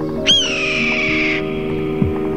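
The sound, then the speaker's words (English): A single hoarse, drawn-out red-tailed hawk scream, starting sharply and slurring downward for about a second, clear against a faint steady background hum. “So I realized I had a really privileged relationship with the wild red-tailed hawk, and I think knowing that it was so special, I kept going back, and I was able to document its transition from a juvenile bird into an adult.”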